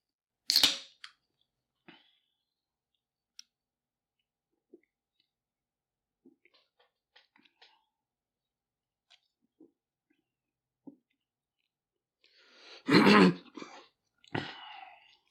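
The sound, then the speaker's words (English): Someone sips orange vanilla Coke from a can, with a sharp click at the start, scattered small taps and slurps, then a louder, noisy gulp and rustle near the end. No one speaks. “Let me get a sip off of my orange vanilla Coke, guys.”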